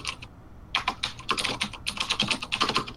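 Rapid, irregular clicking of keys on a computer keyboard, fairly loud, with a brief pause before a steady burst of typing continues. No voices.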